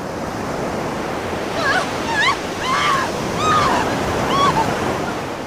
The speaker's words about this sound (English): were swallowed whole by the sonorous waves crashing against the rock and sand.